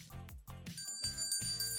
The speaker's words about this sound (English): Wait a minute, Chappelle, did you hear that bell? Mm-mm. Did you? No. Did you hear the bell? Nope, no bell.